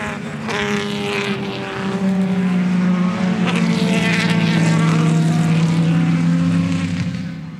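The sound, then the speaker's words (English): A loud, raspy Ferrari 550 GT race car engine roars continuously, its pitch climbing and shifting through the revs as it passes by, with no talking over it. “Then these raspy 550 LMs, which are just my absolute all-time favourite race car. Listen to this.”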